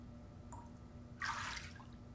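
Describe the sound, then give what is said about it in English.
A short splash of water sloshing in a tub of ice water, a brief watery surge lasting about half a second after a faint drip, moderately loud over a low steady hum. “All it takes is a tub of ice water, a syringe of propanol, and True to watch over me.”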